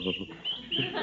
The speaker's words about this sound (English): Now listen to those little birds cheep.